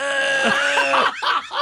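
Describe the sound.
A person loudly imitates screaming while vomiting, a strained, raspy, harmonic retching howl that wavers in pitch and breaks into a few shorter guttural bursts.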